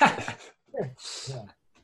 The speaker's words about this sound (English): Let's let the dogs talk.